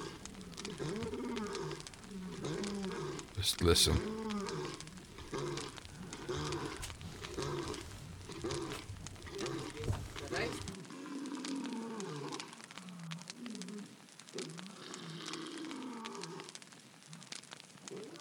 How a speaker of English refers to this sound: I have to pause here because that lion sounds awfully close, and he's coming in this direction. And I can say he with confidence, that's a male.